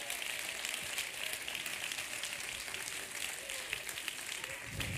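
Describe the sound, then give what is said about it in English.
A crowd applauds steadily, many hands clapping in a dense, continuous patter that holds at an even level throughout, with faint voices mixed underneath. “Somebody clap your hands to God.”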